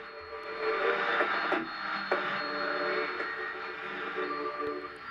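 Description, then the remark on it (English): Steady, hissing FM radio interference on a KXSF broadcast fills the whole stretch, a dense crackling buzz with faint tonal whines and a couple of brief sharp clicks, fairly loud and continuous with no voices. “We have some interference going on our show here.”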